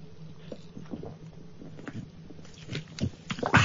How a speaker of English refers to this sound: Drinking Coca-Cola from a bottle, ….